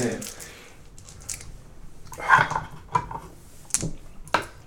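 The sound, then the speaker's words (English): Twelve six-sided dice are rolled in two goes during a tabletop game, rattling and clacking onto a hard surface in several short bursts of sharp clicks, with faint voices murmuring in the background. “I'm just going to roll twice. I was anticipating this moment. I bought more d6s.”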